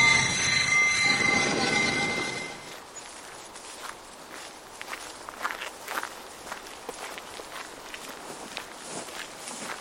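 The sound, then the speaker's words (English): Inside an empty, dilapidated, abandoned train carriage: a loud metallic squeal rings for a few seconds, then fades into scattered footsteps and creaks on a hard floor, with no one talking. “A completely dilapidated, abandoned train carriage.”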